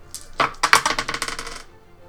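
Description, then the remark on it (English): Dice clatter across a hard tabletop during a tabletop game in a quick burst of sharp, rattling clicks that bounce rapidly and then settle and fade. Fairly loud, with no one talking. “Just add whatever your dice are.”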